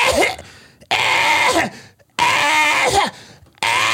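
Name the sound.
imitated coughing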